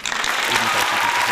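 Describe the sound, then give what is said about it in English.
Dense crowd applause with cheering, a steady wash of many hands clapping at full loudness throughout the brief moment, sounding like a canned or dubbed-in ovation. “Yeah, go to YouTube and do cheering.”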